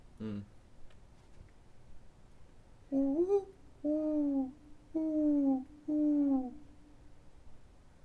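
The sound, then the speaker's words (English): A person imitates a mourning dove's call with four breathy, hooting coos: the first swoops upward, then three steadier, falling notes follow at an even pace, clear after a brief quiet stretch. “That's a mourning dove.”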